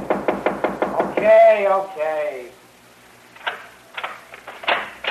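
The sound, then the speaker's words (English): A quick, steady burst of about eight loud knocks on a door, followed by someone calling out and more talking afterward. “Nick, you in there? Come on, open the door”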